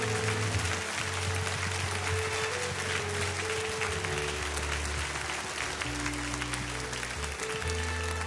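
Steady, dense applause from a crowd, many hands clapping continuously at an even loudness for the whole stretch, with low tonal hum underneath and no voices on top.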